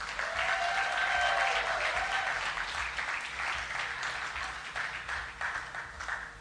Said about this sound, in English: Why did you stop clapping?